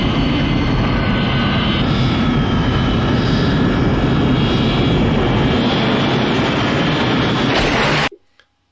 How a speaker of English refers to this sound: I know he just ain't going to jump off the wheel of the plane that he got down there on. So, you know, what's going to happen when the plane goes up in the air?